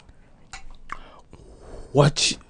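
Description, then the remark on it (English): Mouth sounds of someone taking a big sip of a drink: a few soft wet clicks, then a louder gulp followed by a breathy exhale after swallowing, with no talking. “Big sip. I'm so sorry.”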